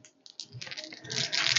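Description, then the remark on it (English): A quick run of hard clicks and clatters as dice tumble across a tabletop during a tabletop game, building to a busier rattle toward the end, moderately loud. “Runaway dice.”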